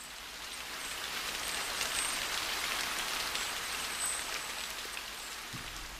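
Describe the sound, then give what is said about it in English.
Steady rain patters on cement, stone and a plastic mac, a dense hiss of drops with occasional sharper taps, constant throughout, with no voices. “The rain noises were on cement, on stone, on my plastic mac.”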